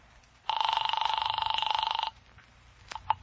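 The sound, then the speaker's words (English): A single long ring of a telephone bell heard through a phone line as a call is placed from an office desk phone to police headquarters, a steady buzzing trill lasting about a second and a half, followed by quiet and a couple of faint clicks. “I grabbed the phone on Ryan's desk and I called Hellman.”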